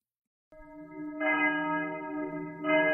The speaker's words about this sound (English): One very sad day, in the coming months or years, bells around the world will toll in a way that has not occurred in the living memory of most people on this planet.